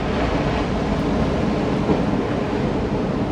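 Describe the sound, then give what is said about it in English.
A steady, loud wash of ocean surf, the broad roar of waves rolling in without clear breaks between them, and no voices. “So if I look out behind me, the ocean is coming in.”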